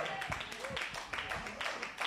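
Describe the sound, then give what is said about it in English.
A crowd claps enthusiastically in a dense, continuous burst of applause, with scattered voices calling out over it, like a lively audience reacting together. “Now, for those of you who didn't clap excitedly, that's okay.”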